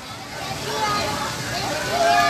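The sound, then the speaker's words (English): Continuous water splashing and sloshing as kids run around in water at a park's water play area, steady and fairly loud throughout, with an indistinct murmur of voices mixed in underneath. “So they run around in tons of water.”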